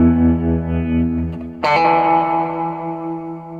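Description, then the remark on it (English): Sustained electric guitar chord with a thick, effected tone played through an Earthquaker Devices Ghost Echo pedal, then a second bright chord struck at about 1.6 seconds, ringing out with echo and reverb trails, loud, no voices. “So I'm going through that's a Earthquaker Devices Ghost Echo, but I got this weird batch of stuff from Crystal Radio, a handcrafted guitar pedal.”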